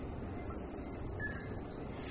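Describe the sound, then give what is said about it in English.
A faint, brief bird call that sounds like an electronic machine beep rises once from steady background rumble and hiss, partly buried in the noise. “I think that's a bird. It sounds like a beeping machine, but it's a bird.”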